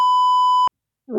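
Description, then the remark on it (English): A single steady censor bleep, a pure high tone held for well over half a second and cut off sharply, followed after a short silence by the start of a voice. “I'm glad you said that, because if we did have to bleep someone.”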